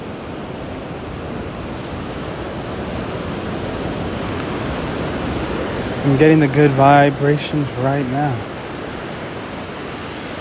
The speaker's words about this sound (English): I hear the water. As it touches my feet.